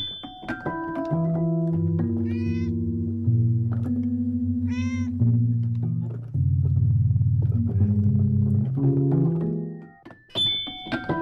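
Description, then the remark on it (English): A cat presses keys at random on a Fender Rhodes 88-key electric piano, leaving overlapping, ringing tones and dissonant clusters. Two short meows come through partway, fairly loud, with no talking. “Here's …, and she's playing on the Fender Rhodes 88-key electric piano from her record called ….”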